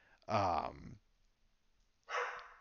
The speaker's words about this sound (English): Oh my God, my dogs are barking. I don't know about what.